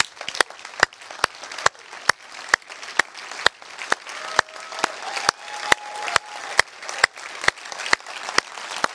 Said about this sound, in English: And also, while we're thinking about it, this is the birthday of the U.S. Marine Corps, and we're celebrating and remembering veterans. So if you're a veteran, would you stand up so we can give you a round of applause?